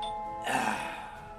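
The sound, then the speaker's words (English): A doorbell chime rings with sustained tonal notes, then swells into a brighter, fuller burst that gradually fades. It is moderately loud, with no voices. “You didn't hear the doorbell ring?”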